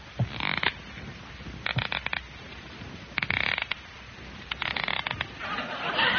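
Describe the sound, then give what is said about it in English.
Squeaky shoes creak in a slow, steady rhythm as someone tiptoes past Mr. Conklin's office, about five high, scratchy squeaks spaced evenly like footsteps over a low background hiss, with no voices. “Squeaky shoes, 20 cents.”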